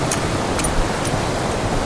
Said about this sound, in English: You know, maybe I'll just leave this waterfall. I've got lots of waterfall pictures.